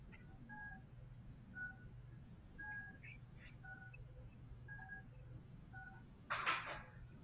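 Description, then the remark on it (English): An apartment's door entry intercom beeps in a run of short, two-tone electronic pips at an irregular but steady pace over a low hum, ending with a brief burst of rustling noise. “There's a lot of beeping going on.”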